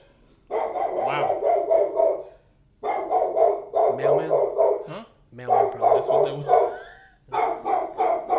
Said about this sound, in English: Yeah, every time the dog barks, it sounds like he's about to pass out on his first bark.